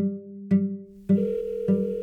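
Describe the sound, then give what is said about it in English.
A telephone line hums with a steady dial tone while phone calls are being made, then a series of electronic tones and ringing pulses start at regular intervals, fairly loud, with no voices. “I spent the next 2 weeks making calls.”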